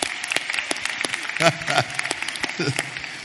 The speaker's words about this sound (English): she was clapping for each member. Yeah, she know. We teaching her right.